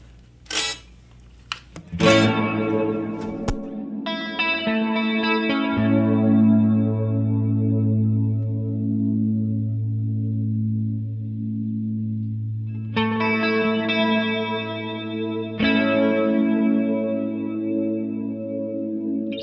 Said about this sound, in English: Yes, and it has flashing lights. And it has flashing lights and it turns green inside when you turn it on. So it's hard to beat that. Mm-hmm. I just added a chorus after the reverb.